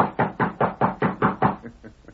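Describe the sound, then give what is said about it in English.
A quick series of about eight firm knocks on a wooden ranch house door, evenly spaced, followed by a few softer, fading taps. “The next morning, he rode to the Lazy Inn, dismounted, and rapped on the ranch house door.”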